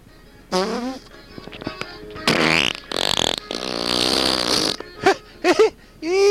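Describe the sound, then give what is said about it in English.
A rapid series of loud comedic fart sound effects for a farting leprechaun character, from long blaring sputters to short squeaky, pitch-bending toots, with no talking in between. “Suck in me farts.”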